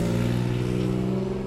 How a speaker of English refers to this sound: If you hear a motorcycle, we have the window open.